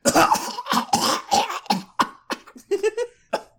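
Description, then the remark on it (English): A loud fit of coughing and sputtering from inhaling smoke, a rapid series of harsh bursts that trail into shorter, weaker hacks and a raspy, throaty choke near the end. “he's going to start coughing and sputtering because it's actual probably smoke.”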